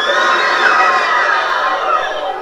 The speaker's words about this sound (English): You can hear there the loud screamings and the astonishment in the crowd of just shock. Dr. Martin Luther King was just killed and people were just learning about it.